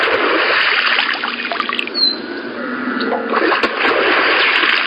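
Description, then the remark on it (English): A beaver's tail smacks the water once with a sharp splash at a dam in a canyon of the Cascade Mountains, rising briefly above a steady wash of flowing, trickling water outdoors; no voices. “And I knew that beavers use their tail to warn their family against predators and that sort of thing, but when I heard that sound, I didn't think it was a beaver tail.”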